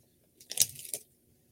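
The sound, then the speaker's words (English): A brief burst of someone chewing beef jerky: a few crisp, tearing bites packed into about half a second, loud, with quiet before and after. “It's beef jerky.”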